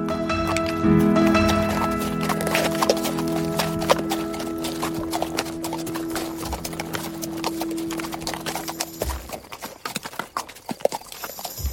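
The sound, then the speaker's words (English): A horse's hooves clip-clop along a track in a steady stream of sharp knocks, first over a sustained humming background, then more exposed and uneven near the end. “I turn my head and watch him parade down the track, so rich in spirit.”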